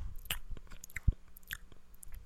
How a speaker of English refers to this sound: That, I would assume. The noises you're making with your mouth. Damn that. With your mouth. Yeah. I ain't into that.